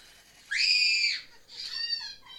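A child screams twice in quick succession: a loud, sustained high-pitched shriek, then a second wavering scream that trails off. No one speaks over them.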